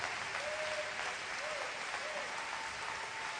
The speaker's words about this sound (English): If you believe that, clap your hands with me and praise Him.